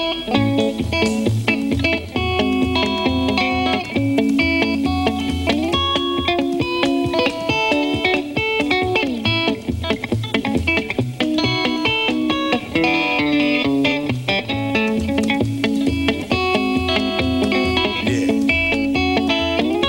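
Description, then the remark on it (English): An electric guitar plays a steady, busy run of notes through an echo pedal, each phrase trailing off in repeats. It is loud and continuous, with no talking. “I'll play it kind of simple, and then I'll try to put the echo to it like he had it.”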